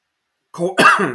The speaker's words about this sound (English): As I'm coughing all over the place